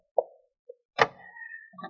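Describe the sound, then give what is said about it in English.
A door is opened for someone who is at it: a short click and a faint tick, then a sharp thump followed by a drawn-out, steady creak before another soft knock. No voices. “Hey, you better throw that rope over your shoulders when you open that door.”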